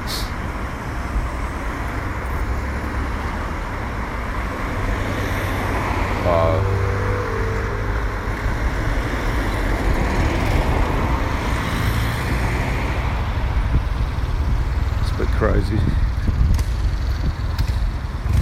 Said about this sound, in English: So many cars around here, and they're all going around the roundabout, and none of them are using their indicators.